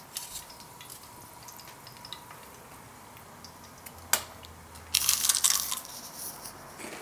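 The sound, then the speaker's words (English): A crisp fried cheese snack topped with chipotle salsa is bitten: a single sharp crack, then a brief burst of crackly, crunchy chewing noise, with no talking and only faint background hiss otherwise. “That crunch. That's when you know it's good.”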